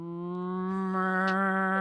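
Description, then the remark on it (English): A person imitates a cow's moo with one long, steady, droning low vocal tone held for about two seconds, loud, with no other sounds around it. “Well, I am from a dairy farming community, yes. So it would be a cow.”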